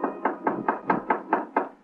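A steady series of eight firm knocks on the wooden door of a dingy room next to a poultry shop, evenly spaced, with a hollow, resonant thud to each rap and no voices.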